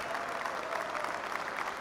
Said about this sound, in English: It's a weird applause.